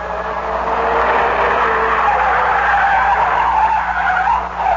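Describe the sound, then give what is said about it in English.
Car tires screech loudly and continuously for several seconds as the car swerves and circles wildly, the squeal wavering in pitch over a low engine rumble, with no voices. “Reed seemed to sag, and the car began to circle wildly.”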